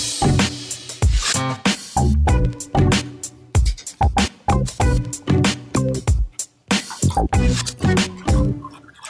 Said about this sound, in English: I tried to avoid the water pouring sound, but I'm just digging in.